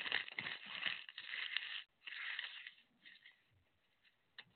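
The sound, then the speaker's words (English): A clean, unused sheet of paper is crumpled into a ball, with dense crackling and crinkling bursts for about two seconds, then a brief pause and softer scattered crinkles fading out. “Even if I toss it in the trash, I can unball it and write in it and still use it.”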